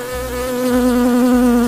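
A bee buzzes steadily and loudly up close, a continuous droning hum that wavers slightly in pitch throughout, with no voices present.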